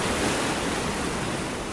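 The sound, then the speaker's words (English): A steady, full wash of surf rolls on without pause, the hiss of breaking water fairly loud, with no voices over it. “If you like splashing about in the surf, the first swim of the year is significant.”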